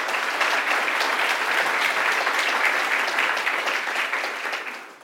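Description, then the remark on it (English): An audience claps steadily for a panel of panelists for about five seconds, a dense patter of many hands that holds at full strength before thinning out at the end. No one speaks over it. “And if I could have just a quick round of applause for our panelists, and we'll get going.”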